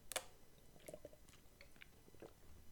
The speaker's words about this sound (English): Wait, hold on. Get a little sip of this. Wah.